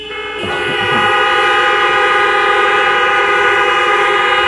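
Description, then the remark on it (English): A crowd of car horns blares together in one loud, sustained chorus, honked on the count of three for about 3 seconds by people who love Jesus, kicking in almost immediately and holding steady without a break until the end, with no talking. “On the count of three, do this for 3 seconds. Honk if you love Jesus.”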